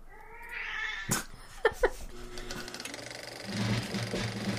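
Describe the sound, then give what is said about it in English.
A cat meows in a drawn-out, wavering yowl, broken by a few sharp knocks and clatters, over a steady low mechanical hum. “We're recording over here, Kitty.”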